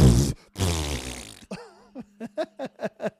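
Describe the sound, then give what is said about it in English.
A voice imitates a wet, sputtering fart with two loud, buzzy raspberry bursts, then a warbling whistle and a quick string of rhythmic squelchy pulses over a low hum. “He shot her in the stomach, and it literally looked like a butthole just farted. It looked like it regurgitated. It literally went.”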